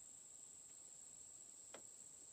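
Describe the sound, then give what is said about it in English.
A steady, high-pitched drone of crickets chirping continuously in a quiet night setting, with one brief soft swish partway through and no voices. “A lot of crickets.”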